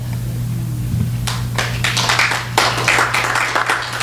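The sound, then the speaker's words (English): After a quiet first second over a low steady hum, a burst of clapping breaks out and keeps going. It has the irregular patter of an audience applauding together, lively. “Please hold your applause along with everything else.”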